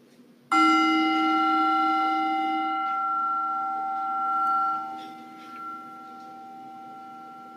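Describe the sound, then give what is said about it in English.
A meditation bell is struck once to mark the start of a 5-minute guided meditation, its clear, bright tone ringing out and slowly fading over several seconds, with no voices present. “So in a few moments, you'll hear the bell signify the start of the meditation.”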